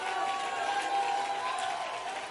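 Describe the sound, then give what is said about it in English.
An audience claps hands unto the Lord in a dense, steady wash of overlapping claps, loud and continuous with no gaps, with a faint murmur of voices underneath. “Come on, if you're really excited, why don't you clap your hands, all you people, and somebody shout unto God with the voice of triumph.”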